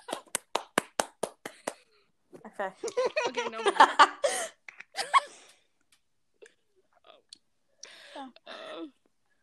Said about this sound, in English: Everyone clap.